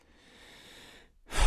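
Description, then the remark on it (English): A single heavy breath: a faint, drawn-out inhale followed by a short, loud, gusty exhale, like a sigh after exertion. No talking. “I feel like I'm breathing heavily.”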